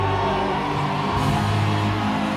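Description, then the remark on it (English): A loud, dense wall of many voices shouting and yelling together, sustained without a break, as a church audience screams after a preacher tells them to get up and scream. “Shout like you just got healed of cancer.”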